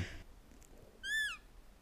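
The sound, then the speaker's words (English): A single short, high-pitched elephant squeak, rising then dipping in pitch, lasting about a third of a second and standing out clearly over a quiet, low hiss. “Just going to leave that little elephant squeak in there.”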